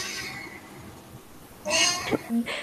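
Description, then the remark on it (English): A male pet cat lets out a loud, drawn-out meow, followed by a shorter second cry, after a quieter stretch with only faint background sound. “Okay, but yeah, any other closing statements besides my cat?”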